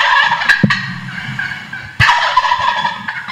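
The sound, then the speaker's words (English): A wild turkey gives a traditional gobble twice in quick succession, loud, each a rapid rattling burst of warbling notes that fades off at the end. “We started out with your traditional gobble.”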